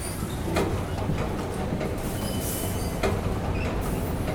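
A subway train rumbles steadily through an underground station, a dense continuous roar broken by short metallic squeals and clicks from the wheels, loud throughout.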